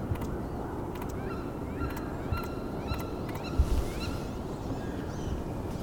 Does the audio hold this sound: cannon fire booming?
no